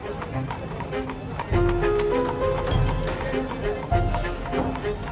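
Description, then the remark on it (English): Horse hooves clip-clop steadily among horses and carriages on dusty Franklin Avenue in central St. Louis in 1885, a quick run of distinct knocks repeating throughout, with sustained tones and a faint voice-like murmur underneath. “People, horses, and carriages darting past him.”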